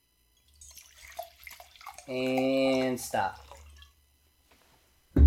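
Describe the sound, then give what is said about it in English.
Liquid pours from bottles with a steady, hollow gurgle lasting about a second, poured on a countdown, while people talk quietly around it and one voice calls a stop. “All right, ready? 3, 2, 1, pour.”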